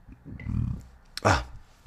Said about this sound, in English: Excuse the burp.